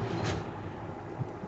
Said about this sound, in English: What was that? That was my air conditioner. It's damn. It's powerful.